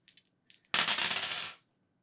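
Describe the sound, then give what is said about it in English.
Dice rattle across a hard tabletop in a game roll to read a bad situation, landing on snake eyes: a few light clicks as they're shaken, then a burst of quick clattering that tumbles for under a second before stopping. No voices. “Please roll to read a bad situation.”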